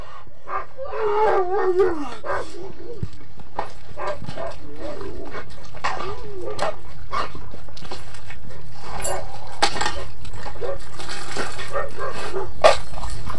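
A team of sled dogs, including a Malamute, yips, barks and whines excitedly all at once at feeding time, sharp overlapping calls and rising whimpers coming in a continuous frantic chorus, with occasional metallic clanks of rattling chains and banging dishes.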